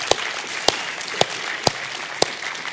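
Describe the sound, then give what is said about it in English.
A church audience applauds in a steady, dense wash of clapping, with a few sharper, louder claps standing out at roughly half-second intervals. No one speaks over it. They are cheering over $100,000 received in special Easter gifts for the church's Freedom Project. “Now, that's something to cheer about, folks, okay?”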